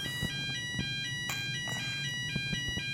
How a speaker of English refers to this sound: it's Wednesday. It's not real, this is it. It's not a real fire alarm.